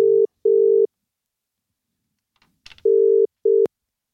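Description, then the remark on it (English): A telephone ringback tone purrs in two double bursts, steady and clear, with a brief clicking clatter between them, like a line connecting, as a call is placed to a competition winner. No one speaks. “So, of course, we need to give him a call.”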